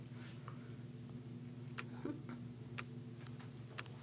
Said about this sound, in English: The apartment is quiet, I can hear my clock ticking from my bedroom.